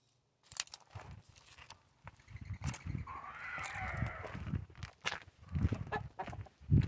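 Chickens cluck in irregular bursts, reacting to birds, with a longer, drawn-out squawking call rising in the middle before the clucking picks up again and grows louder toward the end.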